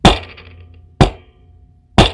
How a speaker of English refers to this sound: Bang the gavel, please.